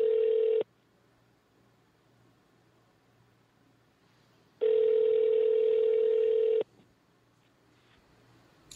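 An outgoing call's ringback tone over a phone line to a Los Angeles area code number, loud and steady, with a brief ring ending at the start and one full two-second ring after a long silent pause. Nobody answers.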